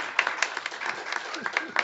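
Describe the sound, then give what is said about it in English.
A small audience applauds the panel guests as they are introduced, with scattered, irregular claps close together at moderate volume, and a faint voice murmuring underneath for the couple of seconds it lasts. “You are allowed to applaud these folks.”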